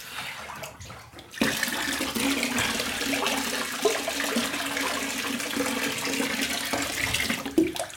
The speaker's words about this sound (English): But now I'm lying in the bath. Just put a bit more hot water.